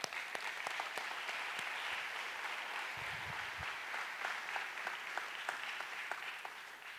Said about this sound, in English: So if y'all will, join me and give a round of applause